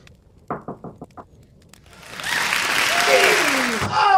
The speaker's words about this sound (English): Hey, I've been knocking for minutes now. I don't understand. What took you so long to get to the door?